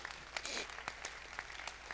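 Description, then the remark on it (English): A crowd of people claps together for the Lord Jesus, a dense wash of many hands with a few sharper individual claps standing out, steady and fairly quiet throughout. “Clap for the Lord Jesus, the anointing.”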